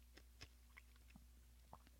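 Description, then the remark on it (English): Crunching of a hard cough drop between the teeth: a series of short, crisp cracks at irregular intervals, fairly quiet, with no talking. “I had a cough drop and it's gone now, so I'm crunching it up.”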